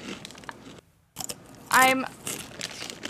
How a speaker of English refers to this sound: I do have a very, I'm taking a very educated guess because I can also hear the crinkling of the bag.